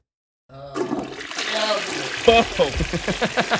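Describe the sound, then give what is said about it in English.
A toilet flushes, a loud rush of swirling water that builds and gurgles for a few seconds, with voices briefly talking over the start. “Why somebody give that toilet a break?”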